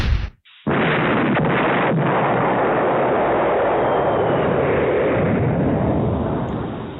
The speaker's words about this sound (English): All right, let's load the cannon and see what we get.